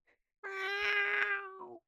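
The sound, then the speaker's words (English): A single drawn-out meow voiced by a person imitating a cat, loud, holding a steady pitch for over a second before dipping slightly at the end. “Meow. Meow. What's happening to her?”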